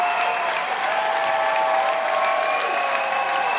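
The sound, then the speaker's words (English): A crowd applauds steadily and loudly after a guitar performance, a dense wash of clapping that fills the whole clip without letting up, with a faint sustained tone ringing underneath. “This crowd loves him for good reason.”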